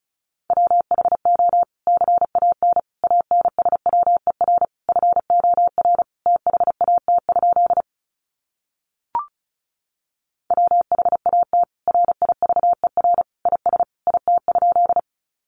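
Rapid Morse code at 35 words per minute: a steady mid-pitched tone keyed into quick bursts of dots and dashes, broken by a short silent pause with a single click partway through.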